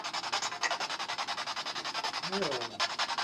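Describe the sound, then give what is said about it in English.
A steady run of rapid, rhythmic scraping scuffs, like feet shuffling across a gritty floor, continuing evenly throughout with a brief low murmur partway through. “Is he shuffling?”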